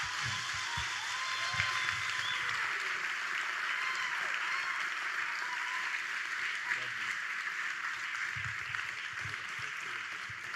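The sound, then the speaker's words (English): Sustained applause from a large audience at Nova Church welcoming guest speakers to the stage, a steady dense wash of clapping at moderate volume that holds evenly for about ten seconds, with faint murmurs and cheers underneath. “Can we give them a Nova Church welcome and welcome Pastor Ben and Emma to the stage today?”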